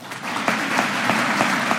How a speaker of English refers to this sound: They clapped and gave him a standing ovation. Republicans sat on their hands, did not clap.